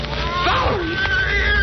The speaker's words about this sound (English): Yes, I can see it now. It's a cat. And there's a woman with it.